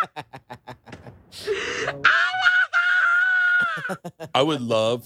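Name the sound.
woman screaming in excitement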